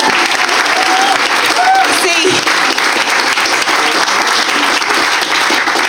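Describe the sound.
Steady, dense applause from an audience fills the whole stretch, loud and continuous, with a brief spoken word poking through the clapping partway in.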